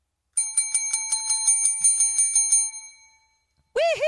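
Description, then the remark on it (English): A small, bright bell, used to mark scoring points, is rung rapidly, about a dozen quick dings in a row. The ringing fades out, then a voice lets out a loud cheer. “And it was a little bell, which we started using for whenever we got points.”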